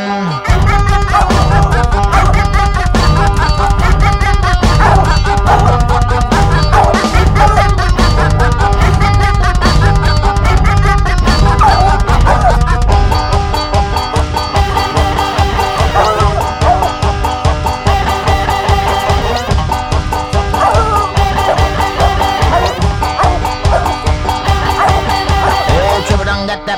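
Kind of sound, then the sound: animal, hunting dog barking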